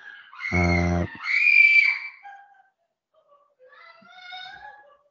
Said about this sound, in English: That's my children screaming, and I don't know why. I'm not sure if it's laughter or just screaming,